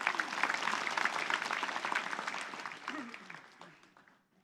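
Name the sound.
audience applauding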